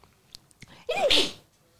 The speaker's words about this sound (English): Need help? What? Need help? How are you going to help me with sneezing?